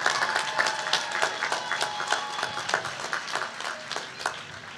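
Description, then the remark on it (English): An audience at a class of 2023 graduation ceremony applauds the family and friends who supported the graduates, many hands clapping in a dense, steady patter that holds at a fairly even loudness for about five seconds, with no voices standing out. “Let's applaud, let's give it up.”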